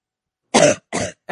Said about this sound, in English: There's some loud coughs. Those are some loud coughs.